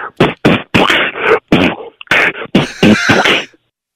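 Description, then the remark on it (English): A voice beatboxes alone over the phone, firing off a quick rhythmic run of about a dozen loud, breathy percussive bursts, kick-like thumps and hissing snare sounds, with short gaps between them and no talking. “You know how to beatbox? Oh, I was a champion in high school.”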